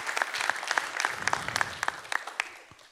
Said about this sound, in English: Amen. Let me get a clap for that.